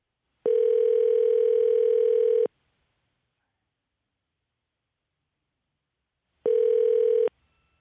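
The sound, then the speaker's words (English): A telephone line tone sounds twice while placing a call to a fan: a steady, buzzy tone lasting about two seconds, then several seconds of silence before a shorter repeat. The tones are loud and clear, with no voices. “I believe the first fan we'll be phoning is Steve.”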